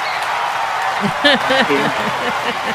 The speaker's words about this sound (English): We're going to give you some hand claps just for being a doctor in our community for over 20 years